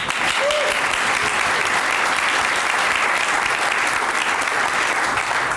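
Steady, dense applause from an audience, a continuous wash of many hands clapping at an even loudness for several seconds, with no voices standing out.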